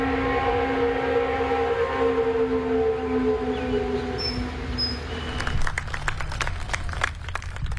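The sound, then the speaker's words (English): The noon whistle of the Canton paper mill in Canton, North Carolina, blows for the final time after 115 years on May 25th, one long, steady, low harmonic tone for about five seconds, then trails off as a crowd of hundreds breaks into scattered applause and clapping. “On May 25th, the noon whistle at the Canton paper mill blew for the final time after 115 years.”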